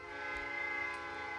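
A train horn blares in one steady, sustained chord of layered tones, fairly loud and continuous for the whole moment, with no talking.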